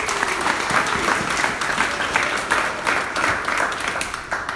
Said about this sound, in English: All right, thank you. Let's give Sky a round of applause.